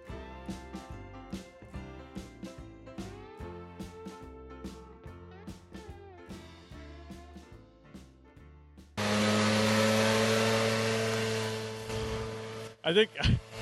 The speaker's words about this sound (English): Hey there, listener. Thanks for riding out this lawnmower break with us.